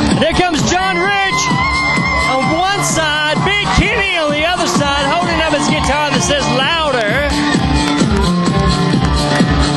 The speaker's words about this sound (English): Screaming, swaying. The band members coming out on stage.